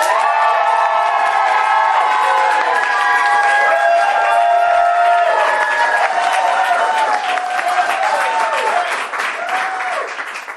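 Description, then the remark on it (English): An audience at a debate show at Cafe Mustache applauds and cheers steadily for about ten seconds to vote for Nicolas Cage as the debate winner, with dense clapping and whoops and shouts rising over it, easing slightly near the end. “If you believe that the victor of this debate was Nicolas Cage arguing for himself, please applaud now.”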